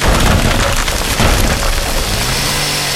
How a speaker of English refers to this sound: A chainsaw fires up and the door is broken down.